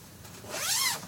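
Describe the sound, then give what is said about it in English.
A tent zipper is pulled open in one steady run, a rasping whir that rises and then dips in pitch over about half a second, with no talking. “Let's see, I need to open this zipper.”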